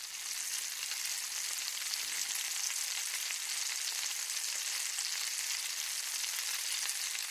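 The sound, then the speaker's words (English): Steady, dense sizzling and crackling of sausages frying in very hot oil in a kitchen, continuing evenly without pause, with no voices. “if you said frying sausages, congratulations. That's the noise the oil makes when it gets really hot and you put something on it”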